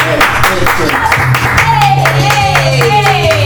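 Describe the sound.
Audience applause: a loud, dense stretch of crowd clapping that continues steadily throughout, with voices and sustained tonal sounds mixed in beneath the claps.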